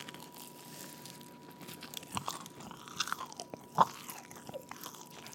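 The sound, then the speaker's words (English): Someone chews a chicken sandwich with moist, crunchy mouth sounds in an irregular rhythm, one sharper crunch standing out partway through, and no talking. “Chicken sandwich not complete, but wish it was.”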